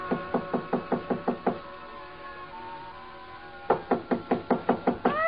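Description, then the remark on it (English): Two bursts of loud, rapid knocking on the door of a hotel suite on the 9th floor, about eight sharp raps each, separated by a couple of seconds of quiet; insistent, with no voices. “So I tried knocking.”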